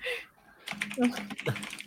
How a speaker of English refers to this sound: Oh Jesus, you're typing.